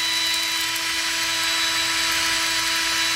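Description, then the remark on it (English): A handheld power tool buzzes steadily and loudly while held against a person's anus, a constant motor whine with a hissing, grinding edge that holds unbroken for the whole stretch, with no voices over it. “I think you just like the idea of power tools and buttholes”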